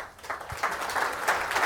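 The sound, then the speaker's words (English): A crowd in a room applauds a commitment to get rid of the 25-cent disposable cup fee by this summer, steady, dense clapping that stays fairly even for under two seconds, a crackly patter of many hands at moderate volume with no voices on top. “Okay, I got some applause in the room.”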